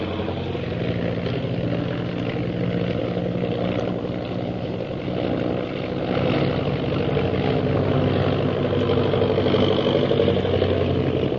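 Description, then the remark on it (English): A propeller airplane engine roars steadily in flight, a loud, continuous droning hum that swells slightly partway through and stays constant, with no voices. “I'm going to try to sound our plane out of the reach of those purple triangle men.”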